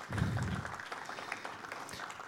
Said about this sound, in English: Could we have a round of applause for all the pastors we have in the house this morning?